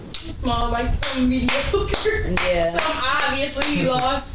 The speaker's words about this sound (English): So I gotta clap for that.